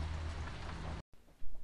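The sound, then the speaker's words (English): Heavy rain pours in a dense, steady hiss for about a second, then cuts off abruptly, leaving a much quieter, muffled background with a soft thump near the end. “I'm gonna check the audio again because it's raining a lot harder.”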